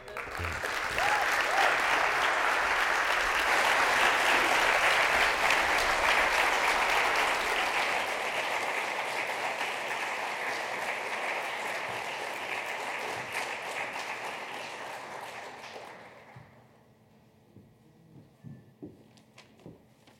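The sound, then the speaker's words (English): An audience applauds warmly for a speaker after a speech, a dense, steady wash of clapping that holds for about fifteen seconds before tapering off, leaving a few scattered claps and quiet background noise. “If everyone wants to give a warm round of applause again for our speaker.”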